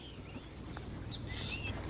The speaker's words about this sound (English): if you listen carefully in the background, there are a load of birds tweeting. They're just not the pigeons.